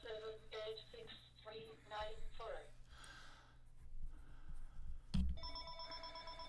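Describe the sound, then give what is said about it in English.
A phone rings with an incoming call, a repeating electronic tone in short bursts, then a sharp knock and a steady, higher-pitched ringing pattern takes over, moderately loud. “I'm getting a phone call.”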